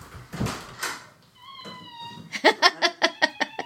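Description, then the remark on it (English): Gnocchi, a pet cat, squeaks and chirps in a rapid series of short, high-pitched calls, following an earlier drawn-out whine, with a brief human vocal sound at the start. “Is that gnocchi just squeaking?”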